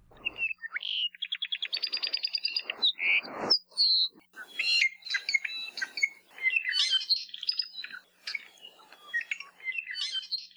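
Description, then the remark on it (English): An apapane, a crimson Hawaiian honeycreeper, sings a busy, varied song of rapid trills, buzzy notes and bright whistled chirps, clear with no one talking, the phrases tumbling over each other for about ten seconds. “today features a crimson honeycreeper in this week's Manu Minute”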